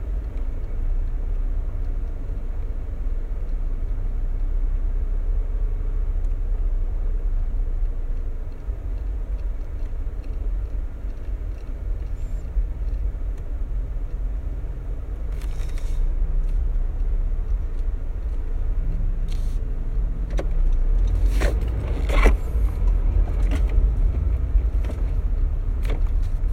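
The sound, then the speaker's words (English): A car drives along with a steady, heavy low rumble of road noise. Scattered clicks and a few sharp taps come in over the second half. No one speaks. “I had to drive because I don't have a bike.”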